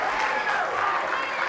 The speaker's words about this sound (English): Amen. Clap it up for our sister.